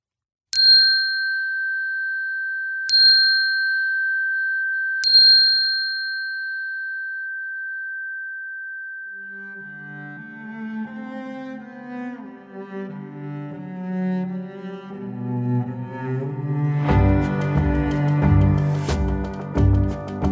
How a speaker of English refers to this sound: And to end this experience with three notes of the chime, we will close our time.